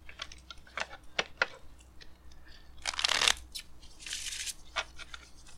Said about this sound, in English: Put a half of that deck in half of that deck. Hold on, I'm still shuffling. Put half of it. Half of it.